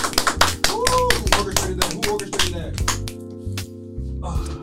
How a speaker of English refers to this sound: Everybody get a clap up for that.